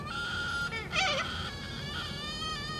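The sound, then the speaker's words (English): A bird calls steadily in a drawn-out, buzzy, harmonic tone, with a louder wavering warble partway through. No one speaks, and there is a faint background hiss. “That's a bird.”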